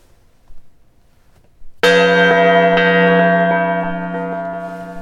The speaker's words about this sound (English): It's the Osler gong.